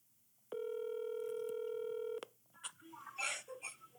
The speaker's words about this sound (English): Let's call him up. All right, all right. I've got my phone here. Let me see. Get his number here.